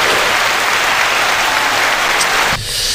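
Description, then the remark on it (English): Loud, steady applause with dense, crackling claps filling the air, then dropping off sharply near the end and fading into a quieter wash. “Might as well clap it up and bring us in.”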